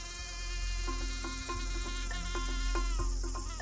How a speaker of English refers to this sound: Mosquitoes are insane. Like, literally, the mosquitoes.